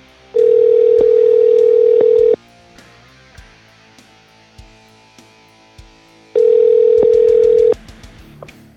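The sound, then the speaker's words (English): A loud, steady telephone ring tone buzzes for about two seconds, goes quiet for several seconds with faint clicks, then rings again more briefly, like a call being placed and waiting for an answer. “So let's get her on the phone.”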